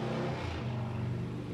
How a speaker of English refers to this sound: Can you hear me with all your traffic driving by? No. Gosh. But I all the well, yeah, I can hear you, but for a second there, no.